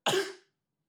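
A single sneeze, a sudden loud burst of breathy, hissing noise that fades out within half a second, followed by quiet. No one talks.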